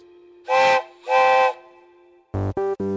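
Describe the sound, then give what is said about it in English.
A steam train whistle gives two long, loud, breathy blasts, followed after a pause by three short, sharp toots in quick succession. No one speaks. “Is it a steam engine train?”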